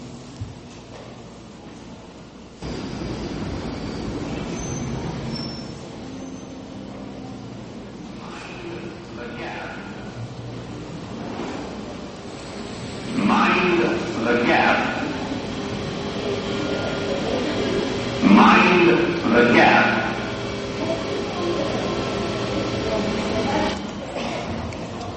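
A subway train rumbles steadily through an underground station in England while a muffled public-address announcement, the platform warning to mind the gap, plays over the noise in two short bursts.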